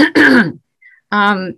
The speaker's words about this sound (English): hold on, let me clear my throat.